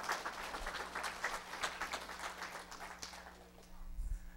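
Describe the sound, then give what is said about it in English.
An audience claps and shouts together during a sermon, a steady, dense wash of many hands with scattered voices calling out, holding fairly loud for several seconds before thinning toward the end. “That's a good place to shout and clap right there.”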